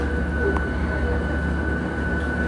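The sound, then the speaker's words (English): A steady, droning roar of cabin noise inside a huge jet in flight, dominated by deep low rumble with a faint constant whine above it, unbroken and even throughout. “Luckily, this jet is huge, so that makes it easy.”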